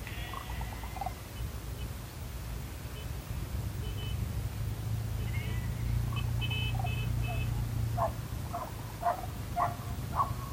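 A dog barks faintly, a short run of several barks near the end, over a steady low outdoor rumble with scattered bird chirps.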